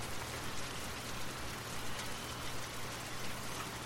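Steady rain patters on the ground in a continuous, even hiss of countless drops, with a faint low hum underneath and no voices.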